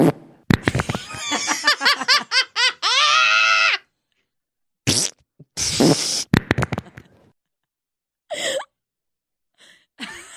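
A loud fart sound effect: a long, squeaky, wobbling blast lasting a few seconds, followed by several short sputtering bursts with pauses between them. No one talks.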